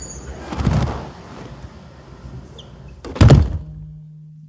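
Two heavy-duty reinforced doors of an anechoic chamber swing and shut with deep, booming thuds as a person is locked inside, the second closing louder, followed by a faint low hum in the sealed quiet.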